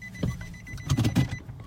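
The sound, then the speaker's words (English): A car creeps forward slowly as it is being stopped, because the driver did not shift the gear, its low engine rumble with a few soft mechanical thumps and whirs over under two seconds and no one talking. “That was me not shifting the the gear. It's kind of funny. The car was like inching forward.”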